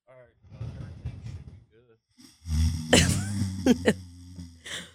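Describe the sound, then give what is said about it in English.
A voice imitates how another person snores: a soft, breathy rasp first, then a loud, low, rattling drone in the second half, broken by a few sharp snorting bursts. “That's literally what you sound like when you snore.”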